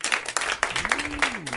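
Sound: audience round of applause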